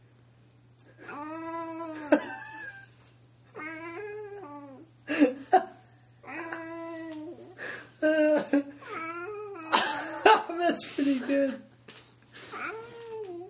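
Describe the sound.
A person imitates a cat, producing a series of drawn-out, wavering meows one after another, fairly loud, with a short spoken remark between the calls and a steady low hum beneath.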